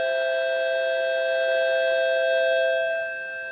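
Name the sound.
bell ringing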